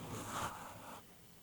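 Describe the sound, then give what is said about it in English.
A computer keyboard slides across a desk in one brief, quiet scraping motion lasting about a second, then the sound settles into faint room noise. No one speaks. “Move that out of the way, and we can move this keyboard out of the way as well.”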